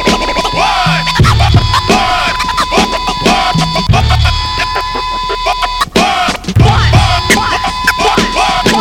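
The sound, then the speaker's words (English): Turntable record scratching: fast, repeated swooping zips rising and falling in pitch, loud and busy, laid over a steady thumping beat with sustained tones. “More scratching?”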